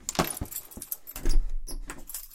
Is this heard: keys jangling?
yes